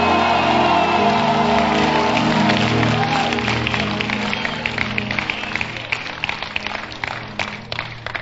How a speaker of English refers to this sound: Clap your hands if you believe in it and shout unto the Lord.